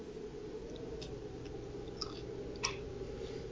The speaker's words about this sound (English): I just wanted to capture your chewing. I did, though. That was the right timing. Wanted the silence in my chewing.